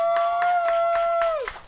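Steady, rhythmic clapping, about four claps a second, under a loud sustained whooping tone that holds one pitch and then slides downward at the end.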